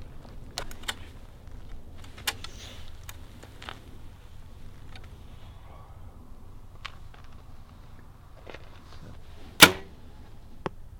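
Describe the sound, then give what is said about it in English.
An arrow is loosed from a bow with one sharp, loud snap near the end, after several seconds of quiet outdoor ambience dotted with faint clicks and ticks. No one speaks. “John's shooting an arrow that's been through an elk already, and I'm shooting an arrow that I just barely got”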